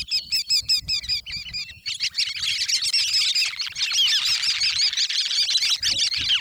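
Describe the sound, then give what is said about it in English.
Sanderlings twittering in a continuous stream of soft, squeaky wick-wick calls, starting as quick repeated chirps and building into a dense, overlapping chatter from a flock, with low rumble underneath. “You can listen for a twittering series of soft, squeaky wick-wick calls.”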